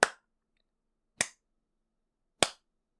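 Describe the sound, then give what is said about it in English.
A slow, sparse golf clap: three crisp, sharp claps spaced over about a second apiece, each short and snappy with silence between and no talking. “This is what we do. The golf clap.”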